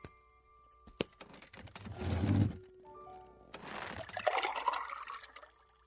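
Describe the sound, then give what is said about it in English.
Water is poured for someone who asked for water to spare: two bursts, a short splash then a longer, gurgling fill rising in pitch, after a sharp click like a glass being set down. No one speaks. “You wouldn't have any water to spare, would you, mister?”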